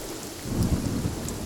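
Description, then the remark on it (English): Steady rain hisses across the whole span while a low, rumbling swell of thunder builds and rolls through the middle, moderately loud, with no voices present. “I dreamt that they were filled with dew, and when I awoke, it rained.”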